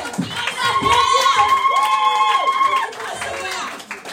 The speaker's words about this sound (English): Clap your hands and give a praise.